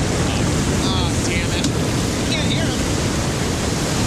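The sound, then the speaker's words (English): A steady, loud roar of ocean waves and surf fills the whole stretch, with a wind-like hiss, and faint voices barely audible underneath. “Waves.”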